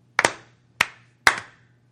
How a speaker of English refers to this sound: Notice I'm clapping for myself.